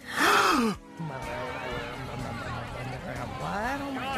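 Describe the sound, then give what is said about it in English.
A loud, breathy gasp voiced by one person, imitating a crowd on a dance floor gasping in unison, followed by a few seconds of low, murmuring voices and chatter. “The crowd gasped together.”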